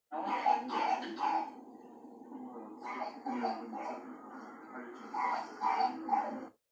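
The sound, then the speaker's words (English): A harsh, barking, seal-like croup cough, a feature of croup, comes in repeated bursts, fairly loud, with raspy strained breaths between the coughing fits. “So that's the harsh barking cough, seal-like cough, okay?”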